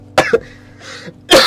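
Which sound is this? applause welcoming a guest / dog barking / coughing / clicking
coughing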